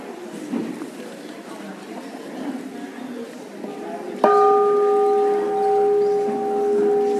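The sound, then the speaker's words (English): A bell is struck once partway through and rings on with a clear, sustained tone over the murmur of many people chatting. “Ooh, that's a nice bell.”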